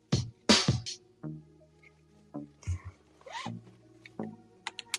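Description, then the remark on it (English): A car seatbelt is pulled and fastened: a few quick rasping swishes of the strap sliding out, followed by scattered muffled knocks, a short click and low humming noises. “Let me put my seatbelt on.”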